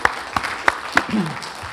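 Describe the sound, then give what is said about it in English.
An audience applauds to thank the people who led them, a steady wash of clapping, with a few sharper claps standing out at a regular beat and a brief voice rising over it. “Can we hear for them?”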